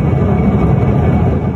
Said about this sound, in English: It was the jet's second attempt to land in a blizzard after aborting its first try, and at first, everything seemed fine. But the plane skidded off the runway and came to a stop, its wing embedded in the snow.